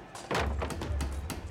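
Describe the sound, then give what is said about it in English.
Heavy factory doors slam shut with a loud thud as employees blockade them against rioters, followed by a quick series of sharp knocks and clanks like bolts being shoved into place over a low rumbling background. “They blockade the doors, bolting them shut.”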